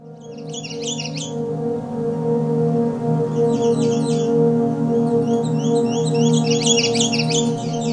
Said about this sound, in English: The American Red Start is an abundant, curious, and talkative warbler found in open woodlands across most of North America. The males have a Halloween-like color scheme and many different variations to their short warbling songs.